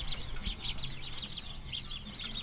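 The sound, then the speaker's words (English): A crowd of young ducks at a farm store peeps and chirps nonstop, a dense high-pitched chorus, with a low rumble underneath and no one talking. “If we gave your mom a duck, she would absolutely keep it.”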